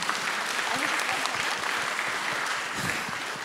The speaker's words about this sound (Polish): No szacun, naprawdę brawa dla tego człowieka.